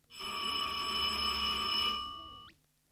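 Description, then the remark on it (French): A loud electric school bell rings for the 10:30 break in one continuous, steady burst for about two seconds, with a buzzing rattle beneath the tone, then cuts off abruptly. “Leur conversation est subitement interrompue par la sonnerie de 10h30.”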